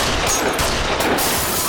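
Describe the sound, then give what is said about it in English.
A volley of gunfire from a gun kept in a purse, several loud, sharp shots in quick succession ringing out over a dense, noisy wash of sound, with no one speaking. “where did you get that gun? It's always in my purse.”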